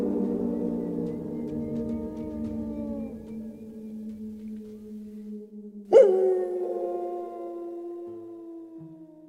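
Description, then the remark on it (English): Several long, overlapping howls rise and fall together in a sustained chorus at night as the moon begins to rise, with one louder howl breaking in sharply partway through before the voices trail off. “And I think we hear a chorus of howls in the night as the moon begins to rise.”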